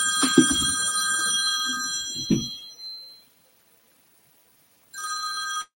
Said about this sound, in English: I said, I'm sorry, my phone just rang, interrupted me. I need to do like you do and cut it off.